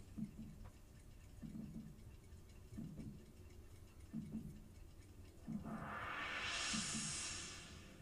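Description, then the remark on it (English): A wind-up alarm clock ticks steadily, paired with soft low thumps at a slow, regular pace, before a bright rising whoosh swells over it toward the end. “Who the hell had one of those old-timey alarm clocks, wind-up alarm clocks in 1988?”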